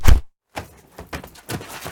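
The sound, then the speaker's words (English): A single heavy, dull thud of a blow cracking someone over the head as he comes in the door lands at the start, then brief silence before a series of softer scuffling knocks and shuffles. “You go sit in a chair, and when he comes in the door, I'll crack him over the head.”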